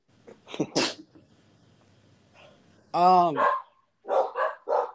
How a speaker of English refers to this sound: These dogs.